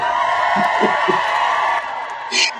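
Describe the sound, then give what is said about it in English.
An audience claps and cheers in a dense, sustained wash of sound, with scattered whoops rising above it. The noise eases slightly toward the end, where one bright shout cuts through. “Let's get you a round of applause too.”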